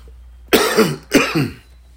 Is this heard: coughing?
yes